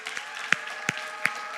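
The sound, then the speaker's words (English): Audience applause from students and leaders for spiritual grandparents: a steady, dense patter of many hands clapping, with a few sharper individual claps popping out roughly every third of a second. No one speaks. “And students and leaders, could we give them a round of applause?”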